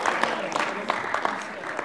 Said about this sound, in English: Can I get a clap for Iron Man? Yeah. There you go.